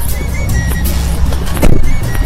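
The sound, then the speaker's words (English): A parked car's steady low rumble fills the scene, broken by a brief loud clunk and rustle partway through as passengers get out of the vehicle. No one speaks. “Okay, we're getting out of the vehicle.”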